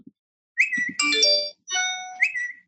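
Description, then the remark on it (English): A rapid burst of overlapping phone notification tones, with bright chimes and electronic pings stacking up one after another, clear with no one speaking. “That is what my phone has sounded like for the past 2 weeks.”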